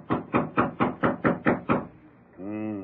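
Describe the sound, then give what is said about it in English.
Eight firm knocks on a wooden door in an even, steady rhythm, clear, followed by a brief voice speaking afterward. “Here's York's door. I'll knock to let him know we're here.”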